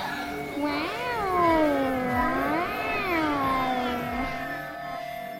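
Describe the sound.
A child's voice imitates a UFO with a continuous, warbling hum whose pitch swoops up and down in several slow waves, moderately loud with no speech.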